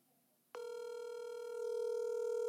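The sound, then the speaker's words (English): A steady electronic phone ringback tone from an outgoing call, made on a phone on speakerphone into a microphone, begins abruptly after a brief quiet pause and holds for about two seconds, clear and fairly loud through the speaker, with no talking. “we're calling Adam on my phone, on speakerphone, into the microphone”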